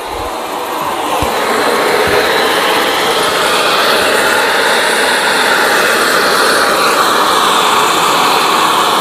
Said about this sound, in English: And the energy that's gone into the water to make it into steam is now being used to push, to make those jets push that boiler around.